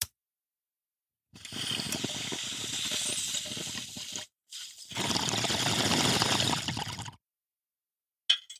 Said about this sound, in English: All right, so I'm going to hit my bong, start my timer, and rant for 60 seconds.